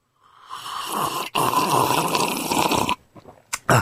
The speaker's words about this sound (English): What on earth was that? It was a slurp. Lovely. A good old-fashioned slurp.